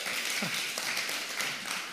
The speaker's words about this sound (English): We finally made it. Everybody just clap. We made it to the end of the book.